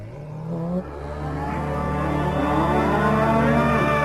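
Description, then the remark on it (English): A THX logo variant sound: a long, loud, synthetic-sounding cow moo with a buzzy, mechanical tone, rising in pitch partway through and sustained for several seconds with no talking. “There was this one, I'll play a clip of it right now, about like a little robot making a cow sound.”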